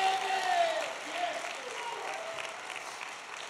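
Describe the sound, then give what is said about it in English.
An audience claps loudly and shouts to God in a dense, steady burst of applause, voices shouting and cheering over it, strongest at the start and holding through to the end. “If you know that's true, clap your hands again and give God a mighty, mighty shout.”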